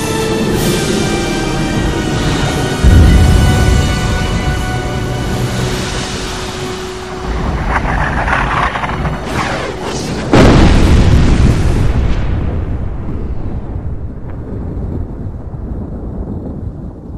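A massive, catastrophic explosion as the Well of Eternity collapses beside a ruined capital city roars out with a deep, booming rumble, followed by a second heavy blast that rolls on loudly before slowly fading into a low, dying rumble.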